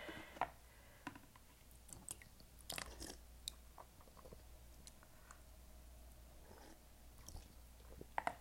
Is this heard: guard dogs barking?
no